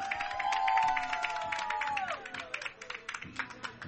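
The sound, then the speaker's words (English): A baseball crowd cheers steadily, with dense scattered clapping and a sustained high whistle-like tone that slides downward before fading, leaving the applause and crowd noise to continue. “Did you ever get a cheer like that?”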